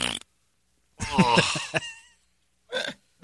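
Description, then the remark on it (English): A loud, drawn-out burp rumbles, lasting about a second, followed by a brief grunting vocal sound shortly after. “that was my front butt.”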